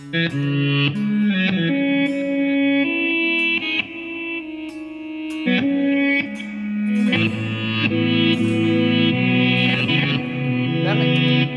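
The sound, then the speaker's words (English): Electric guitar played through a reverse delay setting, notes swelling in backwards and blurring into sustained, shimmering chords that carry on steadily and fairly loud, with no one talking over them. “I was gonna ask, that sounds like it's on the Raven.”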